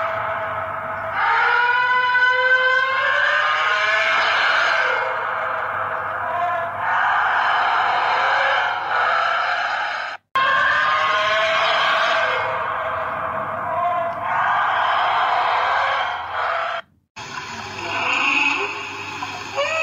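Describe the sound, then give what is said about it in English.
Blue whale calls: long, eerie moaning tones with rich harmonics, sliding up and down in pitch and following one another almost without pause, broken by a couple of brief silences. “Actual tones from Blue Wells.”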